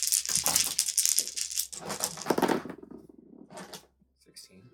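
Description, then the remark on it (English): Dice rattle and clatter inside a dice box in a dense burst lasting a couple of seconds as a player rolls after using a fate point in a game, followed by a few fainter shakes as it settles. Voices murmur underneath. “I would like to use one of my fate points. Okay, sure, yeah. You can do that. Because that's what fate points. That doubles it to 10, right? Yeah. My dice box.”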